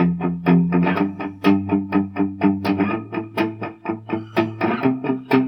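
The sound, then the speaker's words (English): An electric guitar plays a steady run of picked notes over a sustained low tone, each note trailing off into delay and reverb for a wide, spacious sound. There are no voices. “They could even play it maybe with a bit of delay and reverb, so it's yeah. quite nice and spacious.”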